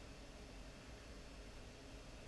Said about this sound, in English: The water kettle next to me